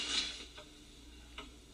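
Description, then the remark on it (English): A quiet clock ticks, with two or three soft, evenly spaced clicks under a faint hiss and a brief higher-pitched mechanical rustle at the start. No one speaks. “And then Dad shows up with the, with the clock.”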